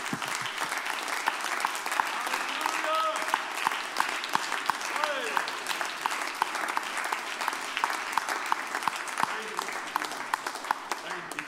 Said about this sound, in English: And if you believe he's going to do it, clap your hands under the